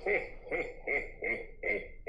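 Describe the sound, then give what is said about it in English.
A Santa Claus buzzer sound effect used as the teachers' team buzzer in a Christmas quiz: a deep, croaky, voice-like burst repeated about six times in a quick, steady rhythm, loud, with nothing else around it. “So if we hear Santa buzzing in first, it will go to the teachers.”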